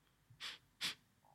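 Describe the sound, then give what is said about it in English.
Two quick, short sniffs through the nose, fairly soft, separated by a brief pause, with no talking, as someone sniffs to smell the air. “Like, if you sniff now, have a little sniff.”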